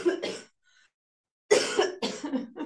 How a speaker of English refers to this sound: Yes, that was me coughing up a lung. So I literally like said it out loud one day, and the next day I woke up like this. I lost my voice.